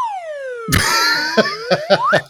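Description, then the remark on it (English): A slide whistle from a movie, a killer clown trying to communicate with humans, swoops downward, then slowly climbs back up in pitch, while a burst of noise and several short, sharp hits punctuate the sliding tone. “It's from that's a killer clown's trying to communicate with the humans. I'm a slide whistle expert.”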